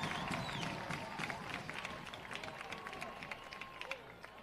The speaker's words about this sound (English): The players think they've got a first down and a first and goal, and they do, and the crowd roars.